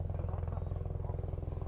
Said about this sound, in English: Got a helicopter hovering overhead.